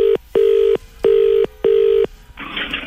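Four steady electronic telephone tones sound in a regular on-off rhythm, loud, then a brief burst of line noise follows as a phone call is placed on the FM 104 radio station. No one speaks.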